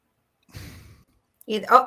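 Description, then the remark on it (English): Breathing comes through a call line: one audible, breathy exhale, then a short voiced murmur or sigh. Both are moderately loud, with silence around them. “I hear you breathing.”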